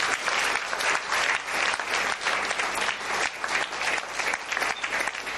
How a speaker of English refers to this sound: All right, let's clap our hands and bless the Lord.